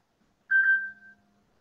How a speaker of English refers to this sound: Interesting phone ring.